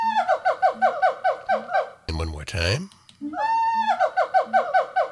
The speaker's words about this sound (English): All right, that is the wild colobus monkey, and it's classified as an old world monkey, and it's native to Africa.